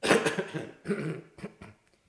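coughing

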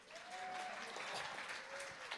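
audience clapping

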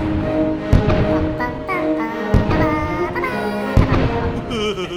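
explosions

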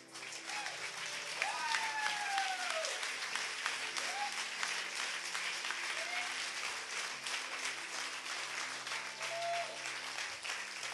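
audience applause and clapping

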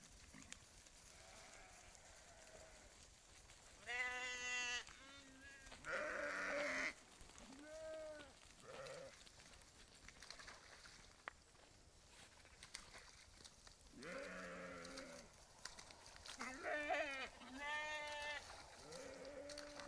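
sheep bleating

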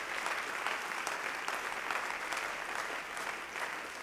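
audience clapping hands

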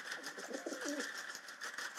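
pigeon cooing

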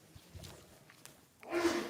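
sneeze

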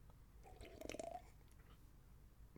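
sipping tea

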